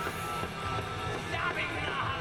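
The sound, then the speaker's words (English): A heavy metal singer half-shouts a rough, strained vocal line over a dense, loud wall of distorted band sound, the voice pushing between shouting and screaming. “It's like he doesn't know whether to shout or like somewhat scream it.”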